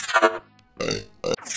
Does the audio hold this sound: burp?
yes